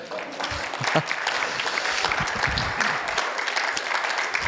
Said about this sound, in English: So let's give the Lord a huge round of claps.